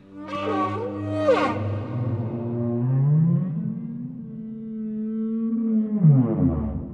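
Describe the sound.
A man's voice imitates a dying elephant with a loud, sustained, wavering groan that swoops and strains for about seven seconds, ending in a rising, rasping bellow.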